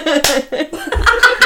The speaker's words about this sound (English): Closing clap. That's it, that's the ending.